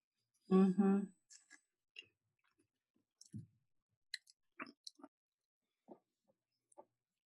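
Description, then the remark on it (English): A brief vocal sound, then chewing: scattered, irregular soft crunches and wet mouth clicks at low volume, spaced unevenly over several seconds with short silences between. “Please continue chewing.”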